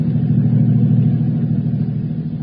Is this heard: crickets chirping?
no